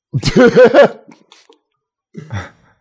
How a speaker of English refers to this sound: That was an in-character cough I just did there. I just coughed once.